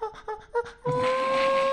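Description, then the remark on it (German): A few short choppy bursts give way to a long, steady, high-pitched tone held at even loudness with a breathy hiss, a voice imitating a television tone heard when the TV sound no longer works properly. “So ganz langer Ton, das ist so wie so ein Ton im Fernsehen, so weißt du, wenn der Ton nicht mehr richtig funktioniert.”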